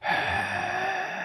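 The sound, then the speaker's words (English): A heavy, labored breath rasps from a person struggling to breathe while eating a donut, one long continuous exhale lasting just over a second, loud and steady, with no talking. “Oh, sorry, that was just me struggling to breathe.”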